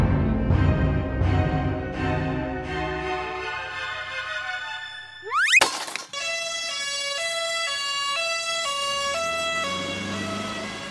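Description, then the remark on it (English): An ambulance siren over a low engine rumble as the ambulance drives away: a series of wailing tones, a sharp rising sweep, then a steady two-tone hi-lo pattern alternating several times at a fairly loud level. “So as the ambulance winds its way away, it's really, well, starting off at least a goalie episode of the injury count here,”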